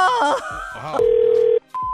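telephone ringing

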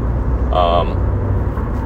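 road traffic passing by

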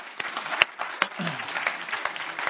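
audience applauding

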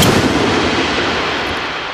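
gunshot

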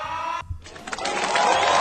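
applause and cheering

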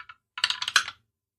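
die being rolled

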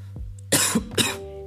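a cough

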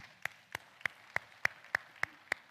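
audience clapping hands

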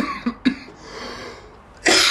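cough

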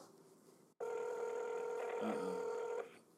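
phone ringing

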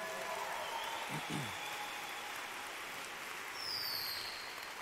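audience applauding

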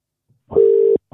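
outgoing phone call ringing

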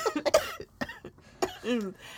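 coughing into the microphone

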